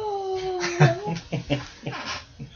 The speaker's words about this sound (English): Yawn. Are you having a heart attack? I'm trying to yawn. That's a good yawn.